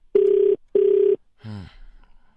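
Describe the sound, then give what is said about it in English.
Two steady ringback tones from an outgoing phone call, each about half a second long with a short gap, followed by a brief voice-like sound as the line is picked up. “Oh, geez, it's actually ringing.”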